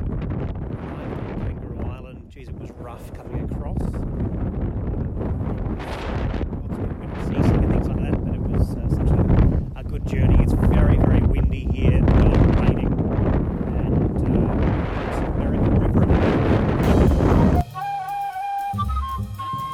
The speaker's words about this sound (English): Unfortunately, this next recording is nearly impossible to hear because it is so windy.